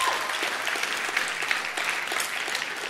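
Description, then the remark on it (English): A crowd applauds the venue staff who served the event, a dense patter of many hands clapping at once, sustained and even in loudness with no voices standing out. “Would you give these people a round of applause?”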